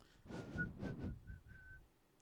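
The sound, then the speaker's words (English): A person whistles a short tune, the whistle of the character Omar from The Wire, of several sustained, slightly wavering notes with brief gaps between them, clear over a faint low rumble of background noise. “That's what he would whistle. He would as whistle walking down the street.”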